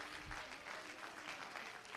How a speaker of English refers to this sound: Why don't about 8 people jump to your feet and clap your hand and shout, yes! Come on, clap your hands if you love Jesus. Hallelujah to God.